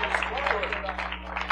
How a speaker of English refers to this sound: Anybody ask you, why are you clapping your hands? Because I'm supposed to use every part of my body.